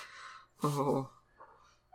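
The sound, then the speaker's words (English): A single cat meow as the cat comes in, short and fairly loud, with a soft breathy hiss just before it and quiet background noise afterward; no one speaks. “I don't know if you guys will be able to hear that on the mic, but as soon as I said that, one of them came in and meowed.”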